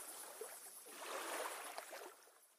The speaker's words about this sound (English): You're listening to Lake Waves at Nightfall.